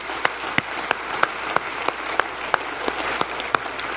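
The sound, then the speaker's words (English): A church audience applauds to give Jesus a hand, steadily, a dense wash of clapping with sharper individual claps popping out at a regular, almost rhythmic pace throughout, with no voices. “Let's give Jesus a hand for what he's done in your life.”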